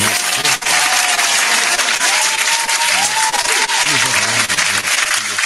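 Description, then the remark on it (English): Steady, dense applause from a crowd on a Culture Freedom Radio Network broadcast fills the whole stretch, a loud continuous wash of clapping with no pauses and no voices standing out. “Round of applause.”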